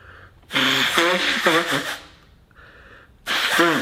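A loud nose blow, a honking, wet rush of air lasting over a second, followed after a brief pause by a second, shorter blast.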